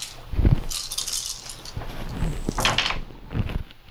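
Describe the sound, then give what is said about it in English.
A handful of eight dice (three green, one yellow, two purple and two black) rattle and clatter across a surface in a game roll, a burst of sharp clicks and knocks that tumbles on for a few seconds before settling, with no voices. “Okay, so I'm rolling three green, a yellow, two purple, and two black.”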